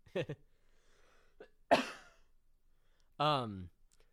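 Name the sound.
coughing fit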